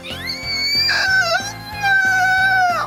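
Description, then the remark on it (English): A human voice imitates the mating call of a female sloth as an inward scream, a long, high, wavering scream-like wail that holds a sustained pitch for about three seconds, with a harmonic buzz beneath it. “So, you can do the mating call of a female sloth.”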